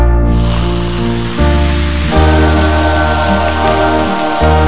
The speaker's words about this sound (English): Someone put out the fire. It's gonna. Hold on. Let me open some coke and I'll pour it on the fire.